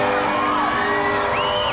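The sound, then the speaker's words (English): A dense, excited crowd cheers loudly and steadily, with high whoops and shouts rising above the constant roar, as Mary Donaldson and her father arrive at the cathedral for her 2004 wedding to Crown Prince Frederick. “The crowd's getting excited.”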